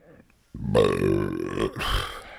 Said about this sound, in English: Nice. That was my best burp of the year so far.